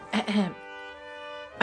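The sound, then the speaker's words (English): A single rough throat clearing bursts out, then trails into a steady voiced hum for about a second before another voice sound begins right at the end. “I'd never clear my throat. I don't know what I was doing. I must be nervous.”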